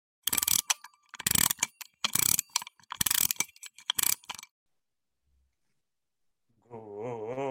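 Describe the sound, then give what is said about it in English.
A clockwork key is wound at keyhole 2 in about five loud, rough ratcheting bursts, each a quick gritty crank. A short silence follows, then a wavering, musical tone starts up. “I'll wind up keyhole 2.”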